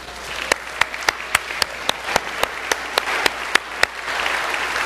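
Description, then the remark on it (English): A church audience applauds the mothers present at the service, a steady wash of many hands clapping with one crisp, regular clap cutting through about three or four times a second, fading slightly at the end. No one speaks. “If you're a mom and present today, would you stand and let us just at least give you a round of applause?”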